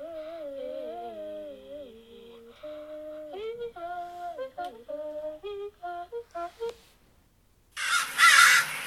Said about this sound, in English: That's exactly it. What a crow sounds like. Yeah. That's what it really sounds like.